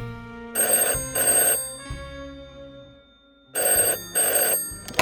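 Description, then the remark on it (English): A telephone rings with an incoming call in two double bursts, a pair of bright trilling rings, a pause, then another pair, loud over a soft musical background. “It was in the middle of an angry rant to Lindsay when he got the call.”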